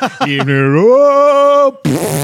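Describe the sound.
A person imitates a fart from a press-conference toilet scene in The Naked Gun, a drawn-out, buzzy voiced sound that rises in pitch and holds for over a second, loud, followed by a brief burst of noisy vocalizing.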